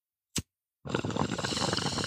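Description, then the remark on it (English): A single short click, then a steady, loud gurgling rush of bong water bubbling continuously in the morning for over a second, dense and churning without pause. “Bubbling in the morning.”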